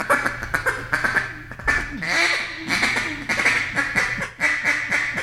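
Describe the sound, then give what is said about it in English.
A duck call blown loud, demonstrating the quack used when hunting ducks, giving a run of sharp, nasal quacks in uneven bursts, some quick and clustered, others spaced apart, with no talking. “I've killed a lot of ducks with a quack, just a quack, just single quack, and a lot of people don't even use that anymore.”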